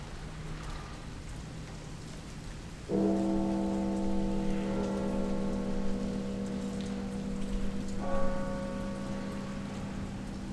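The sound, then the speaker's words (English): Steady rain hisses throughout, a dense even patter. After a few seconds a deep, sustained horn-like drone swells in over it and later gains a higher layer, with no voices. “When the rain comes, the foolish are the ones that curse the clouds and grumble at the storm.”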